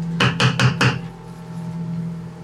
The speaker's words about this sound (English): So I guess I'll knock on whoever's door is closest first. Whichever one.